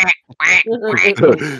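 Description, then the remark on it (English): A person imitates a duck with a run of loud, nasal quacking and low chittering sounds, a few short bursts followed by a longer burbling stretch. “Well, it was making the low chittering noises ducks will make, yeah.”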